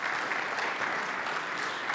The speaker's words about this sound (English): Can we give our worship team a round of applause real quick?